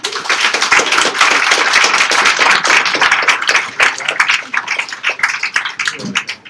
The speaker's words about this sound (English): Give one more round of applause to all of our winners for tonight.